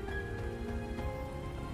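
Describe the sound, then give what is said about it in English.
Steady rain falls continuously at a moderate level, a dense even hiss over a low rumble, with no voices and no break in the downpour. “We could run and lose them in the rain.”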